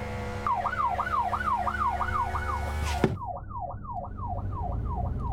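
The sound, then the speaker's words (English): An emergency vehicle siren switched on in traffic near Whitechapel Tube, wailing in a steady, rapid rising-and-falling cycle, loud, continuing without pause over a low rumble of engine or traffic noise. “Just put the old blues and twos on.”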